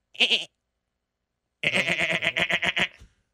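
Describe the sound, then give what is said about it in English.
A voice imitates a goat on a Kansas City sports show after the 'GOAT of the game' is named: one short bleat, a pause of about a second, then a longer, quavering bleat with a rapid wobble, loud, with no talking. “Is that a goat impersonation?”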